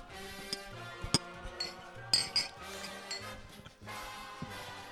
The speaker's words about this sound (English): A little cheersing. Cheers to it. Here we go.